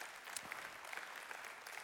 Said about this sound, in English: Listen. 300 folks, a bunch of these. Yeah, you can clap.